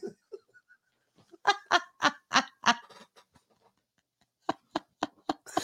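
Geese honking in rapid, rhythmic bursts: a run of loud, harsh honks, a short pause, then another quick series of honks, with no talking.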